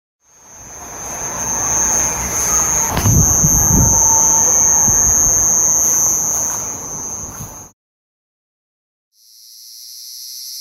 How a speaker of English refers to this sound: So first I'm going to play the Havana syndrome recording